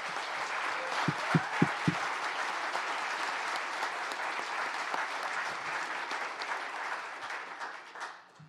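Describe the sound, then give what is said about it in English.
An audience bursts into a round of applause for people who have just shared their stories, a dense steady wash of many hands clapping with a few sharp louder claps near the start, holding for several seconds before tapering off. “I want everyone to give them a round of applause first.”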